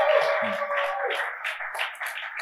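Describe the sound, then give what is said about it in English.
An audience claps and cheers steadily for a pastor for a couple of seconds, a dense wash of applause with a sustained musical tone held underneath. “Clap for perfect lady”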